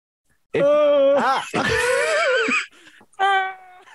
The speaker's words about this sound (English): It's fucking Pee Wee Herman yawn.